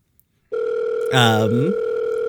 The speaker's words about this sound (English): I think it's at this point that Rio, or that a cell phone starts ringing